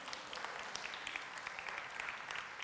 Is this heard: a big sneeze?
no